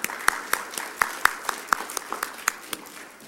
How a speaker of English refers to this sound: But what we have been doing is giving some applause. Let's give a clap, please.